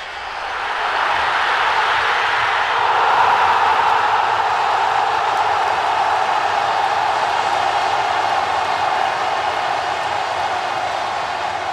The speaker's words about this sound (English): So there are some people cheering for a goal, apparently, of their favorite football club.